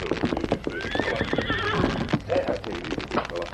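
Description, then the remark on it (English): Hooves of a paint horse clip-clop in a steady rhythm while the horse lets out a drawn-out, wavering whinny midway through, over a busy outdoor background. “He found the Indian squatting beside his paint horse scout.”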